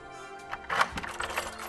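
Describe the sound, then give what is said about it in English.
A brief jangle of keys to hotel room 433 being taken, a quick cluster of light metallic clinks and rattles lasting under two seconds, with no voices. “I takes the keys to room 433 and walk briskly up the staircase.”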